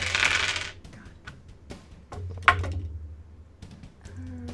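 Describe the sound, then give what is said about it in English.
Small dice rattle in a brief clattering burst, then scattered clicks and taps as a player moves them out of the way and they tumble across a hard surface, fairly quiet, with no voices. “Try to move all my dice out of the way.”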